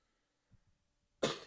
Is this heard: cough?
yes